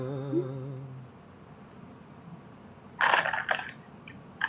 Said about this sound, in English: Sorry, I'm munching. I got my Twizzler.